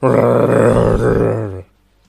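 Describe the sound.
A person voices a deep, rough monster growl, one sustained rumbling snarl lasting about a second and a half, loud, then cutting off into near silence.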